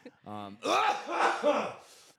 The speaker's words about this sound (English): another cough